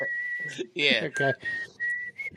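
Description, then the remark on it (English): Someone whistles a tune, a clear high sustained note that breaks off and resumes several times, with short bursts of voiced, singing-like sound between the whistled phrases. “I mean, I don't like all the whistling.”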